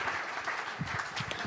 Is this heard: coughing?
no